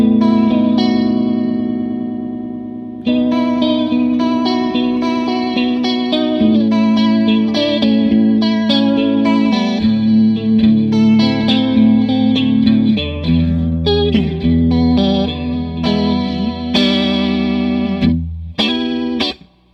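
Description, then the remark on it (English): Electric guitar chords and picked notes run through a TTC Electronic Limited Edition Chorus Flanger pedal, width and intensity near 10 o'clock and speed all the way up, giving a quick, wobbling, shimmering modulation to each sustained strum, played alone with no talking. “Going for the Gold! TTC Electronic’s Limited Edition Chorus Flanger is a Winner!”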